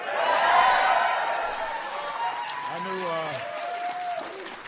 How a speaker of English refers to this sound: I knew you guys would clap on that one.